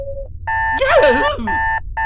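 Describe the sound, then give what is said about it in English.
A wristwatch alarm sounds in loud, steady electronic tones that cut on and off, with a wavering, whine-like warble rising over them in the middle. “A wristwatch alarm.”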